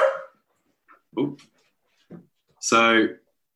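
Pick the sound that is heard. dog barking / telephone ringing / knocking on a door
dog barking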